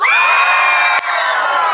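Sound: audience cheering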